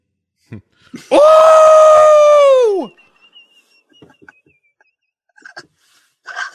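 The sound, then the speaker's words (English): A person imitates how Nadine would scream, letting out a single loud, drawn-out mock scream lasting about two seconds, high and sustained before dropping off, followed by faint scattered clicks and rustles. “How would Nadine scream?”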